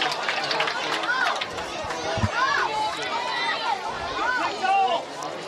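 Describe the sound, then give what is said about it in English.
A lively crowd at a night baseball game fills the air with a steady, dense wash of overlapping chatter, and individual voices occasionally rise into louder calls and shouts above the constant hubbub. “As you can tell, we have a lively crowd here as well tonight.”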